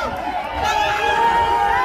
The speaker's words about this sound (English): There's the egg thrower. Yeah, they're booing at the guy throwing the egg.